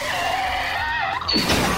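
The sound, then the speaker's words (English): A race car's tires squeal in a long, wavering skid during a race, then a loud crunching crash hits near the end as the car hits a mule on the track. Loud, with no talking. “Now Benjamin's gonna hit it.”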